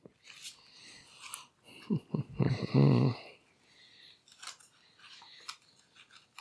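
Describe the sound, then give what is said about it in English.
A deck of cards is shuffled, a quick crisp riffle of snapping card edges lasting about a second, surrounded by softer scattered rustles and handling noises. “Shuffle the cards just a little bit.”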